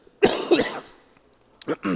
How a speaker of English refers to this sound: Pray for me while I try to get rid of this cough.